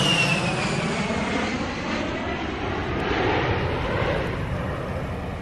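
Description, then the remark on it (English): A loud, steady airplane roar passes overhead along a flight path, a broad rumbling wash with a faint descending whine, filling the whole stretch with no voices. “It's important to acknowledge the planes on this flight path.”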